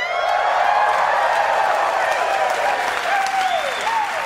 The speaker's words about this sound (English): That's a big round of applause for poetry. You don't hear that often.